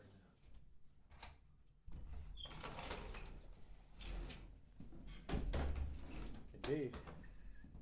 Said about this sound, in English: So, let me grab me a chair so I can sit down.